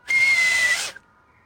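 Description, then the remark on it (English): One loud, breathy whistle blast holds a steady shrill pitch for nearly a second, then cuts off sharply, leaving near silence. No one is speaking. “You guys hear a whistle.”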